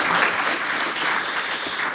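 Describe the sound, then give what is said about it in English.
Steady audience applause for an event's sponsors fills the whole two seconds, a dense, even wash of many hands clapping at a loud, constant level with no voices standing out. “So one more round of applause for the folks who've made this possible.”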